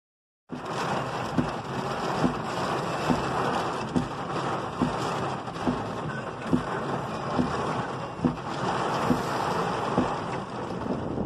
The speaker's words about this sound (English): We had a huge thunderstorm that lasted all of about 30 minutes. Trees are down everywhere. Power's out everywhere.